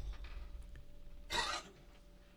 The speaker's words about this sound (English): Oh, right when I had to cough, and I was hoping you'd cover me up. I don't know how I got this tickle.